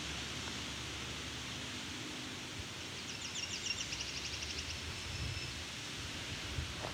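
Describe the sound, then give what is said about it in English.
A Nashville warbler sings once, a quick series of high, thin notes running into a brief trill, set against steady hissing wind or rustling background noise. “My guess is though, is that I'm listening to a Nashville warbler.”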